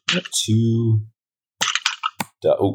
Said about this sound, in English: All right, if you need some typing sound effects, I can help you out. Yeah, please.